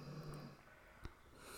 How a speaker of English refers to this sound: snores like a champ. I'm sorry, guys. There's just, this is just real life. She's the best. She's the sweetest. And she clearly worked very hard today. That's why she's snoring like a truck driver.